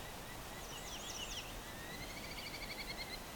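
Territorial calls from two Merlin falcons during a breeding bird survey: two bursts of rapid, high-pitched chattering notes, faint over a steady wash of outdoor background noise.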